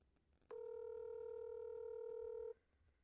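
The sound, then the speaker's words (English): A single ring of an outgoing phone call to a father's work phone: a steady electronic tone that holds for about two seconds, then cuts off, clear and fairly loud against faint background hiss, with no talking. “I'll edit the rings out, so.”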